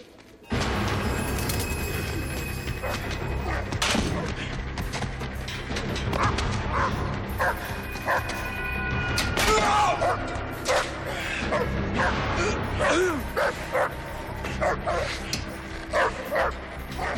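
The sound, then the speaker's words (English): Several dogs bark and yip in a busy, overlapping chorus during a movie scene, with sharp repeated barks and occasional whimpers over a dense, continuous background of commotion. “We had a lot of dogs in this scene.”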